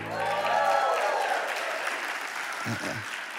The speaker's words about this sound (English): In Spring Lake Park, I can't see everybody that's clapping. And there we go. Now I can see everybody.